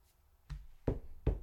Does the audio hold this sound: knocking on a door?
yes